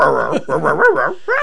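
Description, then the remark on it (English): A dog trying to get into a studio whimpers and whines at the door in a run of drawn-out, wavering cries, three or four bursts in quick succession, fairly loud, with no talking. “My dog's trying to get in the studio.”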